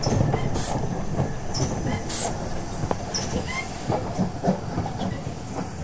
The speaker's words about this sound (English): Twynham-on-Sea! All change, Twynham-on-Sea! The momentum of the train begins to lessen, and it soon comes to a stop at a small, dimly lit station.